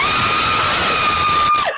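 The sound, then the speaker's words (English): A woman in her new garage lets out a long, piercing scream of fright as a stranger walks up the driveway, held loud and steady for nearly two seconds before her voice breaks and drops off abruptly. “Oh my goodness, now that's a scream.”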